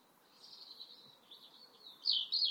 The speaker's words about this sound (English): The robins are going to bed